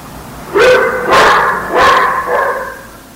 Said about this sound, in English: One more time, the dog barking.